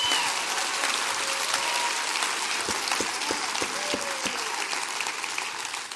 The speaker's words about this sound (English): Clap your hands.